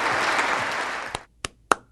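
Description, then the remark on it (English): A dense wash of audience applause holds steady for about a second, then breaks off, leaving three lone, sharp claps spaced out in the quiet that follows; applause during Joe Biden's first address to both houses of Congress in Washington, D.C. “What am I clapping for?”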